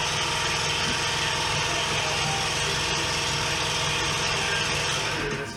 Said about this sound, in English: Well, this break was sponsored by the air compressor. Yeah, Puma. Air compressors, yeah. Quiet like a cat. They'll kick on and scare the shit out of you.